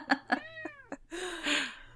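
A cat meows, starting with a few quick chirpy calls and then a longer, strained, drawn-out yowl that fills the rest of the moment. No one speaks.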